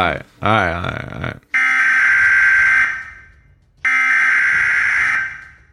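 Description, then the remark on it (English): A loud electronic alarm warbles briefly, then blares in two long, steady bursts separated by a short pause. “Did you hear that alarm?”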